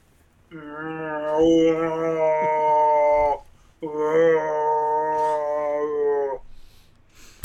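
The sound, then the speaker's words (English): A person imitates a cow as a turn in an animal-noise game, with two long, loud, drawn-out moos, each lasting about three seconds, low-pitched and buzzy, separated by a brief pause. “your noise is a cow.”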